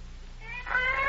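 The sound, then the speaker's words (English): A cat yowls in a single drawn-out, rising wail that swells louder toward the end, heard alone over a low steady hum with no one talking. “What's that? Cats.”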